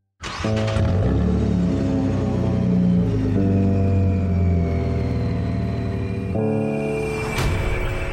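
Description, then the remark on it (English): A powerful luxury car engine in a commercial rumbles loudly and steadily, its deep tone stepping up in pitch a couple of times as it revs, with no one talking. “In a commercial for a Dutch company called Van Moof, a luxury car melts to become one of their high-concept electrically assisted bicycles, or e-bikes.”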